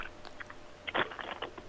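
Several people crunching on crisp food, a quick series of sharp crackly bites in a loose rhythm, with the loudest crunch near the middle and no talking.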